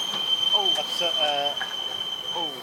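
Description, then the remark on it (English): A class 142 Pacer train's wheels give off a sustained, high-pitched metallic squeal that holds steady through the whole clip, with rail rumble and some indistinct voices underneath. “If you're wearing earphones, that's a class 142 Pacer.”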